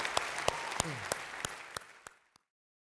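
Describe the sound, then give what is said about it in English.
A church audience applauds to welcome those born into the family of God, in a dense wash of clapping, with sharp, evenly spaced louder claps punctuating it about three times a second before the applause tapers off and stops. “Cheer like crazy.”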